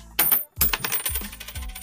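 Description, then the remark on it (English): A quarter drops onto a hard surface with a sharp metallic clink, then keeps ringing and rattling in a quick series of bright, bouncing taps as it spins and settles. “Hey, bring me your coin. I found my quarter.”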